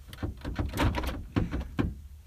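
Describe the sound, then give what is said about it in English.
A car door being unlocked and handled outdoors in the cold, with a cluster of mechanical clunks and rattles followed by two sharper thuds, moderately loud, with no talking. “I just unlocked it. You were messing with the door.”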